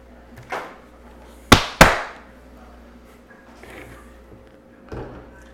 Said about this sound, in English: For the listeners, he pounded his chest.